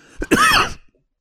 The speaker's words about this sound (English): Sorry, I have the cough. I'll try to mute myself in the future.